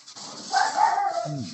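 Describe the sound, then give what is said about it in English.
A dog vocalizes in a quick run of high, whiny yelps that slide downward at the end, heard on their own without any talking. “Dog in stereo.”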